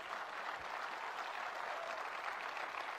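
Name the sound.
audience clapping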